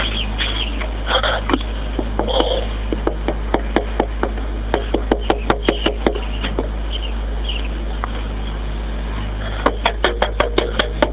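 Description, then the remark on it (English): A woman knocks on somebody's door in a housing development in urgent bursts of rapid, sharp raps, pausing briefly before another quick flurry, all over a steady low background hiss like a muffled phone recording. “And you hear her go up to somebody else's door and she knocks on the door.”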